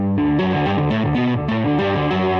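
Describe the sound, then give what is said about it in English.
An electric guitar run through effects gives a sustained, keyboard-like tone, steady chords shifting in pitch every fraction of a second with a bright, slightly distorted sheen, played alone without talking. “That sounds like a keyboard.”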